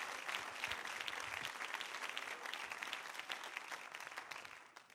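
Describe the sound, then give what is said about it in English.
An audience applauds, a dense, steady wash of many hands clapping at once, holding level for several seconds before easing off slightly at the end, with no voices standing out. “Give him another hand clap if you would.”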